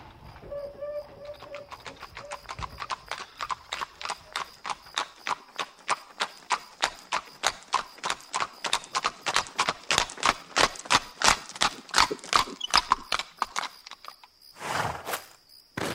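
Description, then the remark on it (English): Horse-drawn carriage hooves clip-clop in a steady, even rhythm that grows louder and sharper as the carriage slows to a stop at a house on an estate, ending in a brief noisy rush. A faint insect or cricket chirp runs underneath. “We crossed the distance to the house, and the carriage slowed to a stop.”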